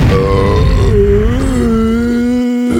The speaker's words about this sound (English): Is that me? Yes. God, that's embarrassing. You should be proud. I don't want burps on the podcast.